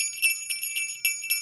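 Small jingle bells shaken in quick, uneven bursts, a bright high tinkling ring that rises and falls with each shake, alone with no talking.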